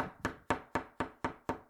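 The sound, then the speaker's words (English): Rapid, evenly spaced knocking on a door, about seven sharp, solid raps in quick succession at a steady pace, each ringing briefly before the next. No voices, only the knocks. “Here's a knock that a friend did to see my girls the other day.”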